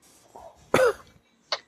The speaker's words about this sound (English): Yeah, I kind of inhaled the first two times, and that's what made me cough, but I didn't even cough on the retrohale.